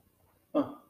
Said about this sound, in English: Dog back there.